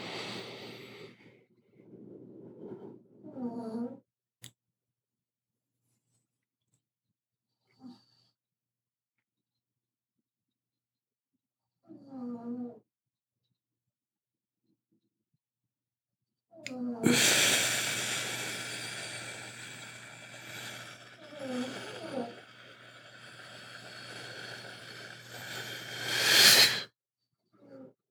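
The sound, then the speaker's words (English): A small dog snores up close in short, snuffly bursts separated by silences, then breaks into a longer stretch of loud, raspy, wheezing breaths with snorts. “Oh, the snoring was so cute.”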